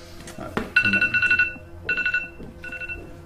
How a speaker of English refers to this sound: Is that my phone?